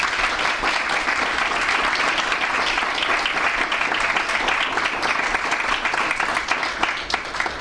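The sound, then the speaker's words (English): An audience at Franklin claps steadily for several seconds, a dense, even wash of many hands with no pauses and no voices rising above it. “So without further ado, just a round of applause.”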